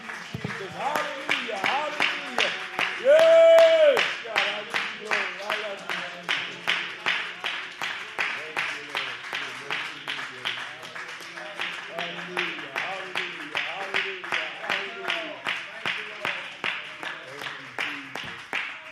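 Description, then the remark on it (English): A church audience claps their hands in a steady, rhythmic beat that runs the whole time, loud, with voices singing or calling out over the clapping. “It feels good to clap your hands in the house of the Lord.”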